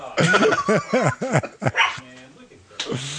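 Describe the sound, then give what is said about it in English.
A dog barks in a rapid string of five or six sharp, loud yaps, then falls quiet while faint voices and room noise continue in the background. “But, sorry, if my wife can keep her dog quiet. Oh, yeah. Dog's noisy, so it's her dog.”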